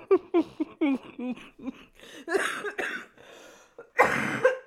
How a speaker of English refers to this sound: I can't laugh without coughing.